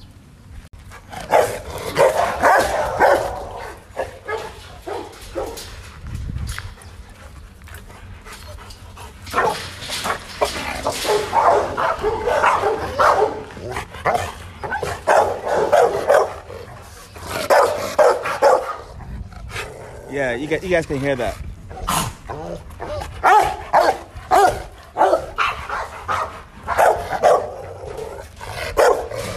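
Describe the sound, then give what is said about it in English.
Several dogs bark repeatedly and loudly outdoors throughout, in overlapping bursts, with some higher yips mixed in, jumping and trying to get over a fence, while a person speaks briefly over the commotion. “So obviously, you guys just heard all the barking.”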